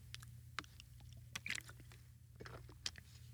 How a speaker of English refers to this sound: I did all of this without taking a sip of water, so I will now.